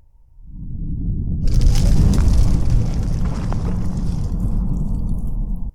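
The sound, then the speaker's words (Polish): A deep, roaring rumble swells in after a quiet start, becoming a loud, sustained crash of boulders collapsing in a cave amid a huge fiery blast, with crackling, gritty grinding of stones rubbing against each other on top. “głazy walą się. Wybuch ognia olbrzymi, a potem tylko dźwięk. Paskudny dźwięk pocieranych o siebie kamieni.”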